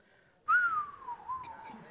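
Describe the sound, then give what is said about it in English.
A single drawn-out whistle starts sharply and slowly glides downward in pitch over about a second and a half, a person imitating the descending whistle of a falling bomb, clear. “Not the whistle. You hear, that's what you hear before the bomb drops.”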